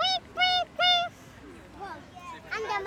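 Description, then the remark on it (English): A voice imitates a squirrel's call with three loud, high chirps in quick, even succession, then trails off into softer squeaky vocal sounds. “And the squirrels are like.”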